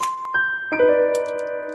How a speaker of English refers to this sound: The little check mark appears in the top right corner to let you know you got it right. Exactly. The LA Noir chime.